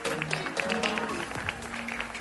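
Scattered audience applause, a steady patter of many overlapping claps lasting a couple of seconds at a fairly soft level, with a faint low tone running underneath.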